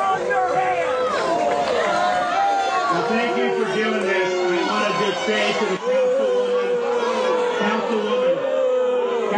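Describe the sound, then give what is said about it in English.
A large crowd in Jacksonville boos Governor Ron DeSantis steadily for about nine seconds, many voices holding long, low droning tones that overlap into a loud, continuous wall of jeering noise. “That was the people booing right.”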